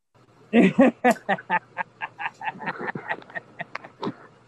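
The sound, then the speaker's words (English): A voice imitates how a person sounds over a faulty speaker, making a rapid stuttering series of short, choppy vocal bursts, loud at first and then irregular, like sound cutting in and out. “Yeah, you sound like this going in and out, turning on.”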